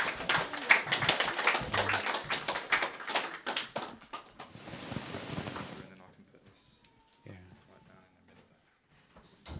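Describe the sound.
An audience claps in a dense burst of applause for several seconds, then it fades away, leaving quieter room sounds and a few voices.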